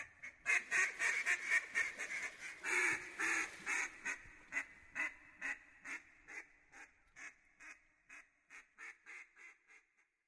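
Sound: mallard ducks quacking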